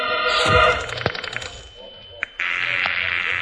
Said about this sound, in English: I ran to the phone booth, dropped a dime into the slot.